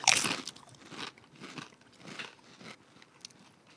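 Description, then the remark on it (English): Crunchy Diablo Doritos tortilla chips being bitten and chewed: a loud, sharp crackling bite at the start, then several softer, irregular crunches as chewing continues, with no talking. “I can definitely, like, out of all the Doritos, this is the one that tastes more like a corn chip.”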